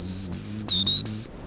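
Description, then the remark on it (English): A person whistles an imitation of a black-throated green warbler: four high, sustained notes with brief gaps, the third dipping slightly lower, clear with no talking. “Or black-throated green.”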